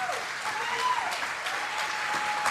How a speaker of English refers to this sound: I will sincerely hope to have deserved that applause when I finish this evening.